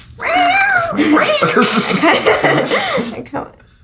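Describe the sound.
During a tabletop role-playing game, a person loudly imitates an angry cat attacking with its claws, letting out a continuous yowling snarl with wavering pitch for about three seconds before it cuts off.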